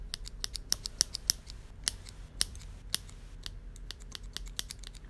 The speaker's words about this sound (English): Enjoy the wonderful sounds of my fridge magnet going clicky.